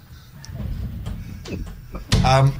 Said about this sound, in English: Oh, no, they're just shutting the door because we're making too much noise. Yeah, too noisy.